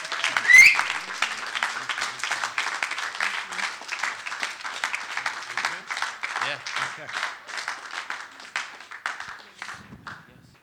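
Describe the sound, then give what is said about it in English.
A standing church audience breaks into sustained applause for a couple being presented, a dense, steady wash of many hands clapping together for about ten seconds before thinning out and fading at the end. “And let's stand and just applaud what God has done in their lives.”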